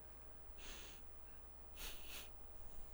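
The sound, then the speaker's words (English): Two sharp, breathy sniffs as a person smells a toy, one early and a slightly longer one a second later, with only faint background hiss between them and no talking. “Is this technically ASMR? If you're just me sniffing.”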